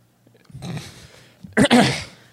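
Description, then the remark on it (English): Two or three harsh, explosive bursts, with a short pause and then a louder, drawn-out rasping cough, like a brief coughing fit with no talking. “You gotta go out there and just cough your lungs out and then come back.”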